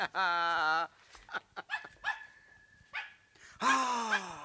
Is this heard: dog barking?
yes